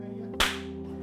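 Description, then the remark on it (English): One loud, sharp hand clap cracks out and then fades quickly over a steady low hum. There is no talking. “Loud clap.”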